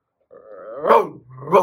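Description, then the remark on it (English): A person imitates a soft, wolf-like dog bark: a drawn-out, whiny rising call that swells into a bark, followed by a second shorter bark. “It's like a wolf. He's like a soft... Like calling out for help.”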